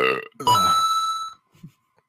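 A loud, drawn-out burp, rumbling for about a second after a short voiced lead-in, then a brief soft grunt as it fades to quiet.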